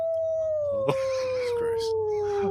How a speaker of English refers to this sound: And a wolf was sneaking up on me.